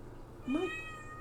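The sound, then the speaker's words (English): A single drawn-out meow from a female cat, plaintive and mournful, rising in pitch and then trailing off, fairly quiet, with no voices around it. “That's such a long meow.”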